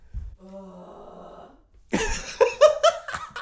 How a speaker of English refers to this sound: All right, I'm just going to go blow my nose for what'll probably be like at least four more times.